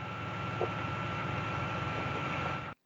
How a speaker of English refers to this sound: That means they have to rely on a generator and batteries, precariously low at the time we did the interview. So we had to run with this generator in the background.